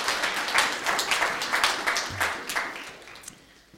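A crowd breaks into applause, a dense burst of many hands clapping at once that swells briefly and then gradually thins and fades out over a few seconds.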